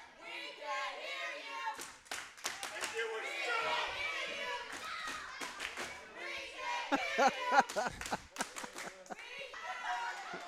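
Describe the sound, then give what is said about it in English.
A loud crowd of wrestling fans boos steadily throughout at a wrestler as soon as he opens his mouth, a dense wash of jeering voices broken by sharp scattered claps and thumps, with no single voice standing out. “What I'm trying to understand is, I can't hear anything he's saying because the fans are booing as soon as he opens his mouth.”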